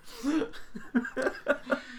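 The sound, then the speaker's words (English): A dog coughs in a rapid run of about six rough, hacking bursts over two seconds, each a short breathy honk with a slightly tonal edge, fairly quiet and with no talking. “But there's my dog that's coughing in the background.”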